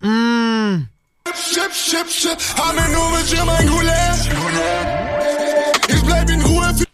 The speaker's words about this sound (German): War das tatsächlich ein rückwärts laufender Hall und ein Echo? Ich glaube ja, ne?